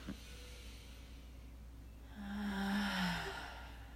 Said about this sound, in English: Inhale to yawn.